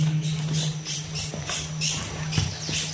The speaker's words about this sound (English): was a warbler finch from your show about the Galapagos. Let's take a listen to that.